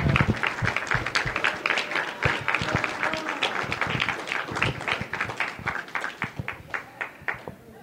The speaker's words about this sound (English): Yes, I would like a strong round of applause.